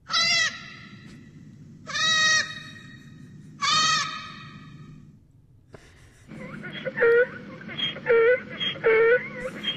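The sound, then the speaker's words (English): A movie monster's roar that sounds like a donkey's bray: three loud, drawn-out wailing cries, then a quick series of rhythmic, honking heehaw-like calls, prominent over a low rumble. “And then the second one's like literally just a donkey bray.”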